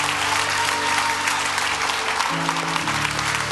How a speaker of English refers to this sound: Come on, let's give the big clap to God.